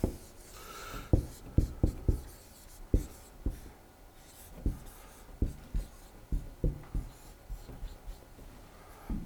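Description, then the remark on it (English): Handwriting on paper or a board: a series of sharp scratchy strokes and taps in an irregular rhythm, with soft rubbing between them and no talking. “Not only am I a bad speller, I'm a bad printer too, writer.”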